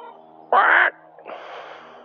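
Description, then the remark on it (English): A chicken, one of grandma's chickens checked on at a fence in the morning, calls out with one loud, harsh squawk, then a softer, raspy, drawn-out cluck follows after a short pause. No one speaks. “Just seeing, checking in on grandma's chickens, or our chickens.”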